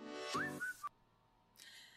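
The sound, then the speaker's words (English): A short whistled phrase of a few sliding notes rides over a full band recording, then the music cuts off abruptly into near silence before a faint burst of sound returns. “There's a lot of songs that have a whistle like that.”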